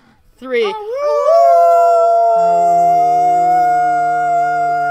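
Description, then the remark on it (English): After a count to three, several people let out a long, loud, sustained "awoo" howl together as a final sign-off, imitating wolves, rising in pitch and then holding steady, with a lower voice joining partway through. “Anyway, on the count of three, guys, because I want to end this on a big awoo.”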